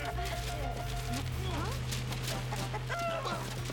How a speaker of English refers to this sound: Chicken!